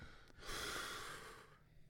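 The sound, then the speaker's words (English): A single long, relieved exhale blown close to a phone microphone, a soft airy rush lasting about a second before fading out, with no talking. “Sounded like a peaceful breath. That was relief.”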